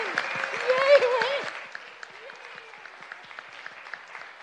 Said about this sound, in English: Thank you so much from the bottom of our hearts, and we should clap